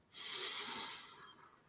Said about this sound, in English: Breathing in, holding for a moment, and exhaling. Allowing yourself just to be present with that.